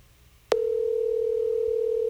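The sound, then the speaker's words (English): A soft click, then a phone's outgoing ringing tone starts: a steady, mid-pitched electronic hum that holds unbroken to the end. It is clear, with no voices. “I wish I could see him on TV looking at his phone and ignoring my call.”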